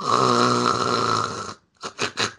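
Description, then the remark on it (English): A voice imitates loud snoring: one long, rattling, rasping inhale, followed by three short snorting puffs in quick succession, prominent with no other talk. “like he's snoring, like he's passed out asleep and snoring in the theater, loud as fuck, and he's out cold.”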